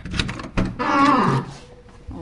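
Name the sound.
squeaky door opening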